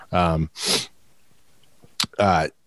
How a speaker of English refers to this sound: Excuse me. I feel like I'm going to sneeze and I apologize for that.